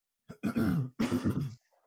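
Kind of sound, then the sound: human body sound, cough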